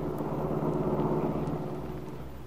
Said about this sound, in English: At that same moment, Kit and Mrs. Kingsley were sitting in the rear of the big car while Max drove carefully back to Malibu.